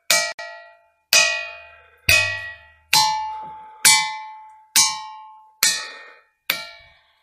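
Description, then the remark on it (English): A ringing rock is struck about eight times at a steady pace, each hit giving a bright, bell-like metallic clang that fades before the next. The tone shifts slightly between strikes, with no voices. “All kinds of different shapes, and depending on where you hit on the rock, you will get different tones.”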